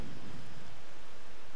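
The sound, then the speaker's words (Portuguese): Heavy rain roars in a dense, steady wash of noise, with a deep thunder rumble underneath, loudest at the start. No one speaks. “Rain, slow down. Chuva, pare.”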